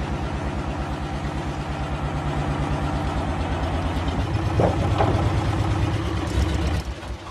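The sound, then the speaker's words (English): A large engine idles, a steady low rumble with regular pulsing throb, briefly revving slightly louder midway before settling back; no voices. “Can you turn the engine off, mate?”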